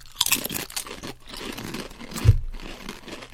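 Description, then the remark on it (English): Crisp, irregular crunching of steak-spice-flavoured potato chips being bitten and chewed, with dry crackly bursts throughout and one heavier thump partway through; no one speaks. “Yeah. Chip cheers.”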